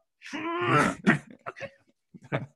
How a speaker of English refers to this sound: Blow my nose.